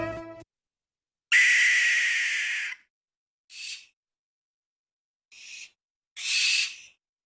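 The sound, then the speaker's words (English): A barn owl screeches: one long, harsh, hissing shriek, then three shorter raspy bursts after brief pauses. The calls are loud, with no talking. “Today, I am going to talk with you about the barn owl.”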